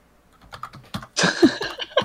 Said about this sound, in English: That is keyboard.